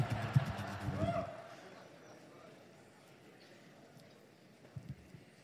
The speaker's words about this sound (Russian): Мне нравится этот звук стульев, как будто кони побежали.